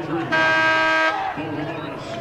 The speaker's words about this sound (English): His shot won't go. And we get a whistle under the basket.